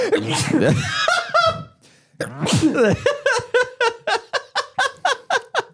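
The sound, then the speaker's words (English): Two loud, explosive sneezes, each a sharp burst of breath, followed by a run of quick, rhythmic laughter pulses. “God bless you.”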